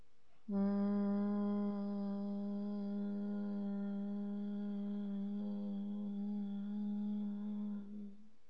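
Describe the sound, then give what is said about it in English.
A person hums through the nose on one low pitch for about eight seconds while exhaling, ears plugged with index fingers, as a breathing exercise; fairly loud, starting abruptly and fading slightly at the end as the breath runs out. “Inhale deeply, and when you exhale, produce a humming sound in the back of your nose.”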